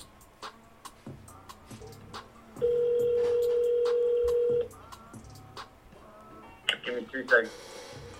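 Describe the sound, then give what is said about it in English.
A phone call being placed to get someone back on the phone: a loud, steady electronic tone holds for about two seconds, followed later by a few short beeps, with faint background voices and clatter throughout. “Let's get Haji back on the phone.”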